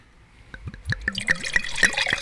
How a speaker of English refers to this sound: Pour into the mic, or at least close to it. Pour the glass. The glass is probably a good start.